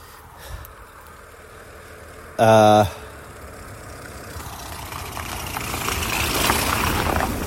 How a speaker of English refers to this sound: Hang on, here comes the car again.